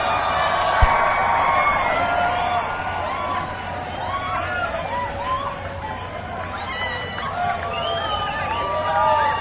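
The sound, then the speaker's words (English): Race fans cheer steadily at a race's victory celebration as drivers Tony Kanaan, Oriel Servia and winner Will Power break out champagne, with scattered high whoops and shouts over a dense roar, plus one sharp pop near the start; the noise stays loud throughout. “And now, race fans, let's make a little noise as we break out the bubbly.”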